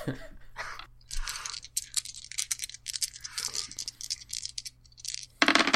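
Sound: three dice rolling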